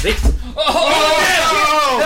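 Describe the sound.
A chair breaks entirely under a man with a sudden loud crack and heavy thud as he catches himself just before his head hits a mirror, followed after a brief pause by excited, laughing voices that carry on for the rest of the moment.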